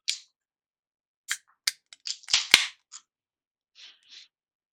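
A whiskey bottle being opened: scattered sharp clicks and crinkly crackles build to one loud snapping pop, followed by two soft, faint scraping swishes. No voices are heard.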